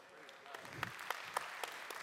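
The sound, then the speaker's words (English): An audience claps in a steady, moderately loud wash of applause, with a few sharper individual claps standing out at fairly even intervals and a faint voice murmuring underneath. “I like clapping.”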